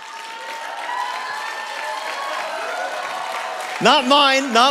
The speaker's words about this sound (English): Yes, you can applaud.